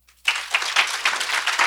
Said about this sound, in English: … says, hey, let's all give a hand to those who made that decision for the first time. And everybody clap real quickly.